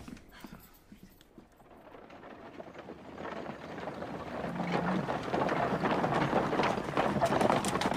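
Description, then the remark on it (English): A horse-drawn coach clip-clops along a road, hooves and rolling wheels forming a dense clattering rumble that grows steadily louder, with no talking. “Put them in the coach and take them to a place of custody, all three of them!”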